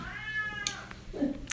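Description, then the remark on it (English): A cat yowls at 3 a.m. in a drawn-out, wavering cry with rising and falling pitch, followed by a lower moaning note, against a quiet nighttime background. “He gets up 3 a.m, gets up, yells at the cat. So every night, this is what I hear.”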